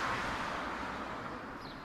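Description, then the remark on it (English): Steady rushing road noise from cars passing on a street lined with terrace houses, a broad continuous wash that slowly eases as a vehicle moves away, with no voices. “and the cars continue to pass.”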